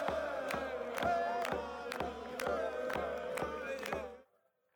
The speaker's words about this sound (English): What are they supposed to do when you come up playing the drums in their face while they were doing school chant?